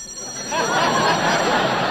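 After a brief quiet moment, a telephone bell starts ringing, a bright, rapid metallic trill that carries on steadily and fairly loud to the end; it is a long-distance call from Kansas City for Jack Benny.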